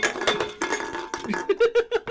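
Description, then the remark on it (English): Cans of beer being knocked over in a bedroom, with a jumble of hollow metallic clattering and clinking for about a second, then a few short, rhythmic voiced bursts. “Hear him wrecking all those cans of beers in his room. Knocking them over.”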